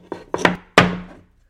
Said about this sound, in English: Hang on. So for those that are listening to the banging, I just flipped the coasters over so that the Jewish coaster is on the bottom now, and the church coaster is on top of it.